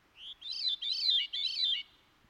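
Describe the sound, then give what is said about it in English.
A veery (Wilson's thrush) sings: a short lead-in note followed by three quick, breezy, downward-spiraling flute-like phrases, clear and alone against a quiet background. “And I see it is the veery, or Wilson's thrush.”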